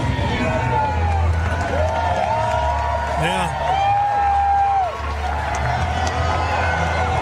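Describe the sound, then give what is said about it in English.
A huge arena crowd at the NCAA men's wrestling championships roars and cheers continuously in reaction to Donald Trump's appearance, with swelling chanted voices rising above the dense, loud din; a single voice briefly speaks. “went by the NCAA men's wrestling championships and got a huge reaction from the crowd.”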